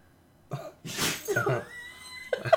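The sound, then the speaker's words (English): A dog named Sky sneezes several times in quick succession, sharp breathy snorts with short pauses between them, and no talking over them. “Well, you guys get to be blessed with the dog sneezing ASMR.”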